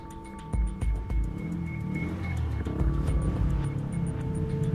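A deep, rumbling hum of motorcycle engines from a gang of bikers leading a funeral cortege, steady, swelling slightly louder over a few seconds, with scattered ticking clicks on top and no talking.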